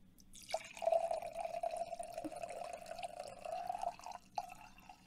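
A 2021 Olema Sauvignon Blanc white wine pours steadily into a glass for about three and a half seconds, a continuous gurgling stream with a bright ringing tone, then stops. No one speaks.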